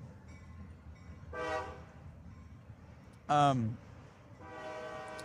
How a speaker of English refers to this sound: Oh, there's a train. Yeah, we're right by a train track.